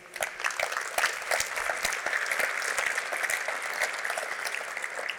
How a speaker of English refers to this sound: Quick round of applause to everybody on the symposium committee. Also, to all of the board of NAIOP, to the members of NAIOP, quick round of applause, thank you.